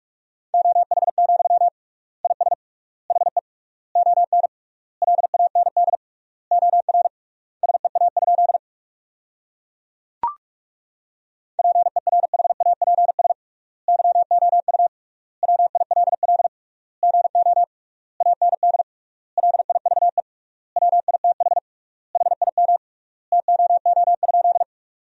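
Fast Morse code at 45 words per minute with triple word spacing, sending sentences built from the 500 most common words: a single steady mid-pitched tone keyed into rapid dits and dahs, grouped into words with short pauses. A brief click sounds midway; no voices.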